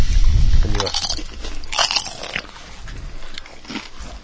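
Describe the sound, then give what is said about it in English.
Loud crunching as someone chews food, with a few sharp crackly bites spaced irregularly among softer mouth sounds and a low rumble at the start. No one speaks. “That's actually better sound than the constant crunching.”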